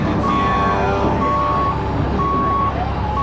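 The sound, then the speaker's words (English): A truck's reversing alarm beeps at a quarry, where trucks are backed up to the quarry's edge, in slow, evenly spaced tones, about four long beeps, over a loud, steady low engine rumble and a dense background hum. “All these other trucks. What are they doing? They're all backed up to the quarry's edge.”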